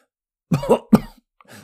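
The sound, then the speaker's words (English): A short run of dry, raspy coughs from one person, three quick hacking bursts, with the last one softer and breathier than the first two. “The wizard began a dry cough.”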